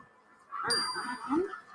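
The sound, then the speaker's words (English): Warning bells ring out in New York City to warn people to evacuate the city, one sharp metallic strike followed by bright, sustained ringing tones that linger over a low, murmuring rumble, fairly loud. “The bells you hear are ringing to warn people to evacuate the city as the Martians approach.”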